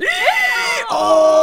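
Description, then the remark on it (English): A voice acts out a robber's pained groaning and whimpering after being bitten on the leg by a dog, a wavering moan sliding up and down in pitch, then shifting into a strained, steadier cry. Fairly loud, with no words. “Screamed the robber, and he limped across the yard, whimpering and moaning.”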